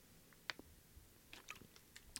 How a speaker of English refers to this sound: This one is a mouthful, so I had to take a sip there.